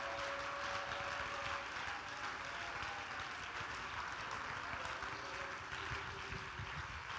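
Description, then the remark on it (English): An audience at a church service claps hands together to praise God, in a dense, steady wash of applause that runs the whole time, with faint sustained tones from voices or music underneath. “Oh, I wish you'd clap your hands and praise him right now.”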